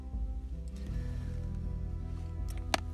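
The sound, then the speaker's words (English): Thin Island Fever hot sauce pours steadily from a bottle, a soft continuous liquid trickle with a few small clicks and splashes near the end, and no talking. “This one pours a lot easier. It's not as thick.”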